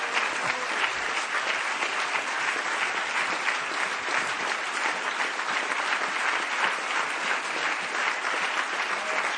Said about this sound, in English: Give the Lord a hand clap, would you, right now before you're seated?